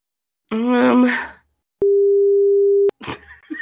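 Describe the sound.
A single flat, mid-pitched censor beep holds steady for about a second, loud and clean, sandwiched between a burst of voiced talk before it and more speech right after.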